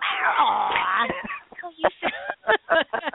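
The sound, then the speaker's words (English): A pet tuxedo cat named Sarah, with mid-length hair, a black coat, white chest and white paws, lets out a long, drawn-out meow that wavers in pitch, fairly loud and whiny, followed by a voice talking in short bursts. “I hear a kitty cat.”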